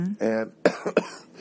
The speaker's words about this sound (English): And everybody, I apologize. There's going to be a lot of coughing tonight. I've had a cold for the past 2 weeks, and this dry air really makes me cough.